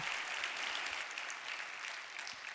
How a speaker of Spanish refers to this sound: Dale un aplauso al Señor, gloria a Dios.